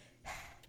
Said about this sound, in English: I don't know if you heard that, but I like panted. That's really weird.